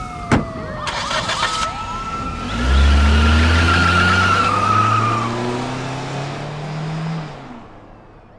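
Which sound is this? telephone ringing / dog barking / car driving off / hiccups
car driving off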